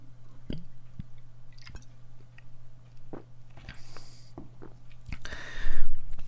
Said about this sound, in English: I'm going to have another sip of Strongbow. Where did it go? Don't walk away from me, Strongbow. Don't walk away.